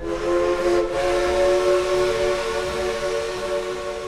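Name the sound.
steam train whistle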